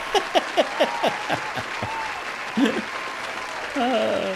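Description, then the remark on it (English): A short burst of applause, a steady wash of clapping with a quick string of rhythmic whoops or cheers on top that fades after a few seconds, with a brief voiced sound near the end. “I'm going to give myself a round of applause for that.”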